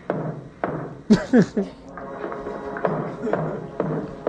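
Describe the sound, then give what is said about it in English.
Knocking on a door, four sharp, hollow raps spaced out unevenly, with murmured voices and other faint sounds underneath. “They're now knocking on the door 4 times.”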